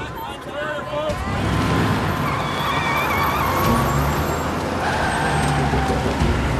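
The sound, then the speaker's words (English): A car brakes to a stop with a loud, drawn-out high-pitched squeal over steady engine and road rumble, sustained for several seconds. “That was a hell of a sound effect for a car barely stopping.”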